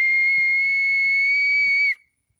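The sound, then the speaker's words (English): A single long, steady, high-pitched whistle calls cows for a banana snack at S3 Goshala, holding one loud note for about two seconds and then cutting off abruptly, with faint low thumps and shuffling underneath. “You know, if you are, whistling, that means they know that they got some bananas through some guests.”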